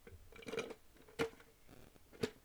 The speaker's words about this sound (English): Give me 2 seconds to drink some water, y'all. 2 seconds.